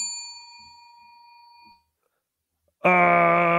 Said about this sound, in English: Thank you. You get a bell.